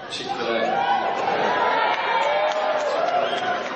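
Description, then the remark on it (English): An audience shouts out restaurant suggestions, many overlapping voices calling out at once, a loud, steady jumble of shouts with a few brighter voices rising above the din, joined by scattered laughter. “Now people are just shouting out right there.”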